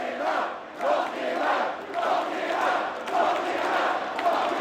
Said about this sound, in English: You can hear the crowd trying to knock him out.